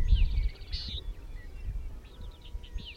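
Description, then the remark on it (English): A bird chirps in a few quick, high bursts in open grassland, set against a steady low rumble of wind. No one speaks. “Like, if it's a bee buzzing or, yeah, a bird chirping or whatever, it's like you're alone, but never really alone.”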